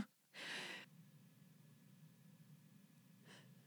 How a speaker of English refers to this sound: Bless you.